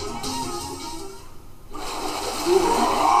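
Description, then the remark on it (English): Turbulent water churns and rushes as someone is sucked down into it, a broad gurgling swirl that briefly thins before surging back louder, like water being pulled down a drain, continuous. “Oh, he's getting sucked in down into the water.”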